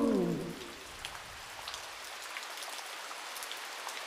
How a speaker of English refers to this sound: Meetings held under drips, drop, dropping from the roof. Puddles appeared like stage effects beside you.